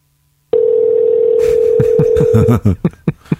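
A steady, unbroken telephone ringing tone sounds for about two seconds over a phone line on an outgoing call, with muffled voices and background chatter starting partway through and continuing after the tone stops.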